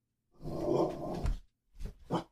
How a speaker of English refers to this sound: Blooper. Are you done? Doggy barking is blooper time.